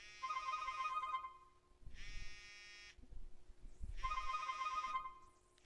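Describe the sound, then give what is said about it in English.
A cell phone rings with an incoming call, a bright electronic tone in three roughly one-second bursts separated by short pauses, fairly loud over a low background rumble, with no one speaking. “So what I'm going to do is I'm going to open my cell phone, and I'm going to call”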